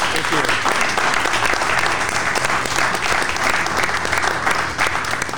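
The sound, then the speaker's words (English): A crowd claps steadily in dense, sustained applause for a group, lasting several seconds, loud and even throughout with a slight dip near the end. “So with that, I'd like to ask for our group here, let's give them a round of applause for their great...”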